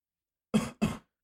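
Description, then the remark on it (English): A man coughs twice in quick succession, two short, harsh bursts, with silence before and after and no talking. “he goes to cough.”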